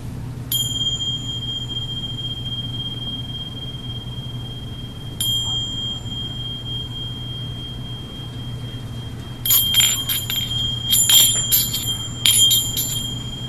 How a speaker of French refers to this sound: Ah non, ça a mal fini. C'est tellement beau, trois beaux sons de cloche.